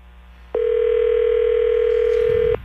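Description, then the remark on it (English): A steady, loud telephone tone as a call is placed live on a radio show holds one pitch for about two seconds, starting and stopping abruptly, with a faint low hum underneath and no speech. “You're going to call her live right now.”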